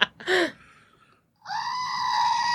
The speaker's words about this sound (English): So what is that? So this is our screaming goat. Okay, so why is the screaming goat so significant?